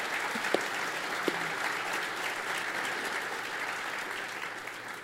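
Steady applause from a sizable audience fills the whole stretch, a dense wash of many hands clapping at an even, sustained level without any voices breaking through.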